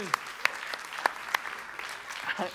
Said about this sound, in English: Give the kids a big clap.